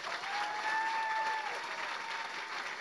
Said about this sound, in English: Let's officially give a big round of applause to Gary Vaynerchuk.